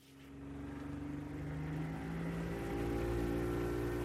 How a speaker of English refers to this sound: The boat heads out into the bay.